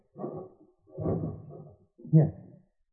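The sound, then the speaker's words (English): A dresser drawer scrapes open and slides shut as someone gets a necklace from it, in three short wooden bursts, the last ending with a soft knock, moderately quiet with no voices. “Where's the necklace? In the dresser drawer. Here, I'll get it.”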